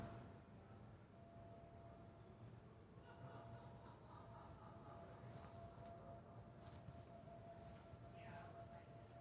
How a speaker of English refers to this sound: There's a siren. Oh, yes, I know. I remember this. I forgot you could hear it from here. That's the Friday night Shabbos siren to let the Hasids know and the Orthodox know that it's time to get indoors.